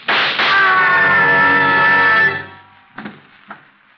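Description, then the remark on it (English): A long, piercing scream holds for about two seconds and trails off, then after a short pause comes a quick burst of two or three sharp, quieter gunshots, from downstairs. “I heard a scream. Downstairs. So did I. And shots...”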